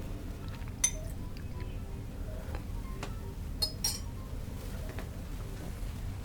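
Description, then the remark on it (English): Water being added to a glass of Lost Monarch whiskey, marked by a few sharp, bright glass clinks and light ticks spaced apart over a steady low background rumble, with no talking. “Well, I just added some water.”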